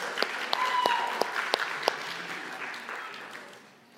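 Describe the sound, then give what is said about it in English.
An audience applauds a child after a block-tower stacking attempt, a burst of scattered hand claps, a few sharp individual claps standing out at first before the clapping thins and fades over about four seconds. “a round of applause.”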